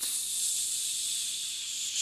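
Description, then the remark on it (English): A steady, airy hiss of escaping gas runs unbroken for about two seconds as a pneumatic office chair slowly sinks with someone sitting in it, with no voices and only slight swells in loudness. “So as I'm talking, I read the same line of text over and over, and I only move to the next line because the chair moves me.”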